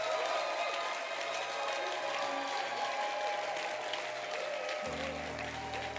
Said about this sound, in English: I don't think it's too much for us to clap for the choir again.